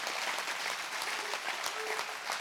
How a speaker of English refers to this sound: Come on, let's really clap our hands.